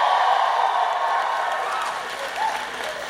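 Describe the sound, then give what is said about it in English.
A live audience cheers and applauds loudly, a dense sustained wash of clapping and shouting that stays steady throughout, with a few whoops rising above the roar. “Y'all are fucking loud and I'm loving this it.”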